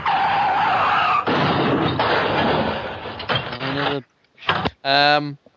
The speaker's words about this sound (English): If you're not careful when you're driving in those races, you might get into a car crash.